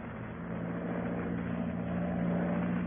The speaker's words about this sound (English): Then I saw the monoplane again, coming up from the east.